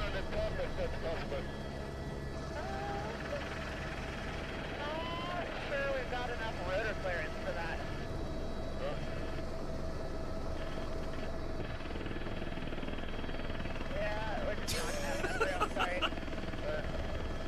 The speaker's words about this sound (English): Are you figuring it out yet? No. They're in a helicopter up to a mountainside. Yep. No. They're going to jump and ski that?